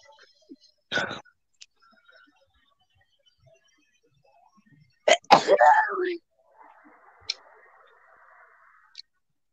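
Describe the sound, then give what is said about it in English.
A single loud sneeze with a sharp burst and a trailing vocal tail, preceded by a shorter breathy burst. Faint murmuring and small ticks fill the quiet around it. “Rude. No one says bless you.”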